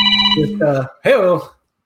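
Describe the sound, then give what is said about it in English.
A phone's electronic ringtone plays a short melody of steady, bright tones, fairly loud, then a brief voice-like sound follows before it cuts to silence. “Who's calling me?”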